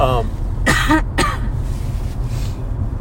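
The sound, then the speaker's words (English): A couple of sharp coughs and a throat clear in quick succession, over a steady low background hum, with a brief voiced sound just before them. “I'm sorry, I'm having a coughing.”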